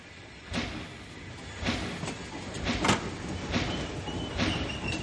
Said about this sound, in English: The train was just pulling out.